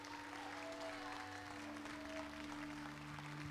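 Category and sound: crowd, weak audience hand clapping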